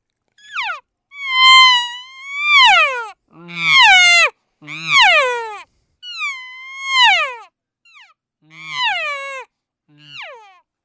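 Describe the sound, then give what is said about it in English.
A person imitates estrus cow calls, as done in cold calling situations, with a series of drawn-out, whiny, wavering moos, about eight calls with short gaps, some rising and falling in pitch, loud and without other talk. “So what I would do in those cold calling situations is I would do an estrus cow call first just to set the scene, and then I would do the sounds of a bull tending a cow.”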